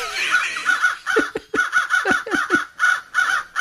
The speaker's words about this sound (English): Several crows circle overhead.